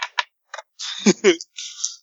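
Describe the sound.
Dice clatter onto a table in a few quick, sharp clicks during a roll-off in a tabletop game, two dice landing on top of each other, followed by a hiss of rattling mixed with a brief murmur of voices.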